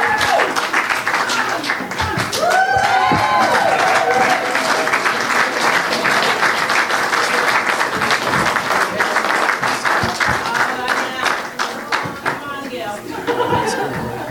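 Loud, sustained applause from a Faithpoint church audience welcoming the first guest speaker up, dense rapid clapping mixed with cheers, whoops and crowd chatter, holding steady before easing slightly near the end.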